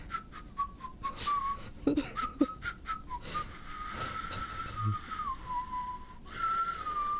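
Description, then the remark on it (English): A person who has just learned to whistle whistles a wandering, slightly unsteady melody, with breathy intakes between phrases and a few soft clicks, continuing for several seconds without any talking. “I learned how to whistle.”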